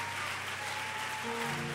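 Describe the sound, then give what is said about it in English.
An audience in Mississippi claps in praise to the Lord, a dense, steady wash of many hands applauding together, with a sustained organ-like tone humming underneath and no speech. “Come on, we're clapping for the King of Kings and the Lord of Lords this evening.”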